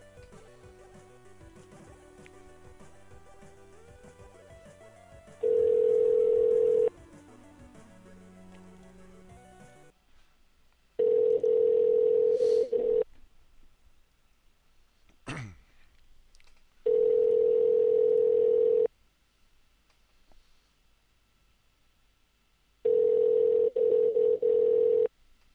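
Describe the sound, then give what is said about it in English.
An outgoing call's ringback tone sounds four times in a steady rhythm, each loud ring lasting about two seconds with quiet gaps between, after a brief stretch of dialing tones. “Click on it, call it.”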